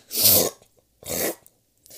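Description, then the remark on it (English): A voice imitates the snorting snores of a sleeping mummy under its bandages: two harsh, noisy nasal snorts in a slow rhythm, each about half a second, with a third starting at the end, fairly loud. “Strange snorting noises come from under its bandages.”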